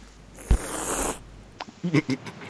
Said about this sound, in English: Yeah, but you hear the cat hissing?